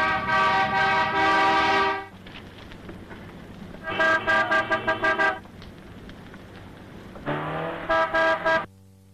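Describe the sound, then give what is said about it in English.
Loud car horns blare in long sustained blasts and short rapid honks in a traffic jam of stalled cars on a bank holiday weekend, several horns overlapping with a low traffic rumble underneath, and no one speaking. “there's a very famous scene that lasts for about 10 to 15 minutes where they're working their way through a traffic jam in a sports car”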